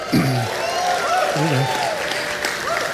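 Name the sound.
audience cheering and applause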